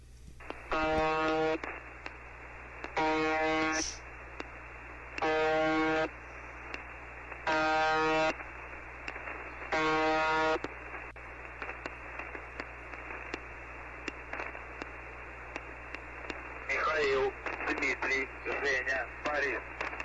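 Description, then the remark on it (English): A shortwave radio station's harsh buzz repeats five times in loud, evenly spaced bursts of about a second each over steady static, at the start of a recording where the transmission was interrupted, followed by crackling hiss and a muffled voice. “this is one of the times when it was interrupted, and I've cut it so that it's there is a little bit of the buzz in the beginning, so you'll see what that sounds like.”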